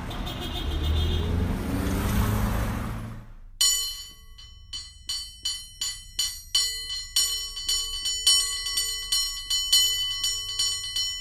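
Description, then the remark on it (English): A rumbling vehicle passes for a few seconds, then a cable car bell clangs rapidly and repeatedly in a bright, rhythmic ringing pattern, loud, with no voices. “That is cable car bell ringing, the theme of our episode, crossover episode.”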